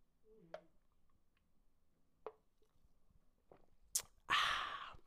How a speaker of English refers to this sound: But bitch, when I tell you that mango and chili and that strawberry, listen to the sip.